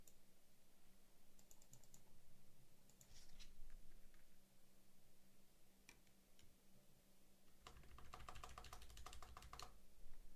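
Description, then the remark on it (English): Bursts of keyboard typing as someone enters a card number to pay, quick clicky keystrokes coming in short clusters with pauses between, ending in a denser flurry of taps over a low steady background hum. “Because I can't say out loud what I'm typing in, obviously.”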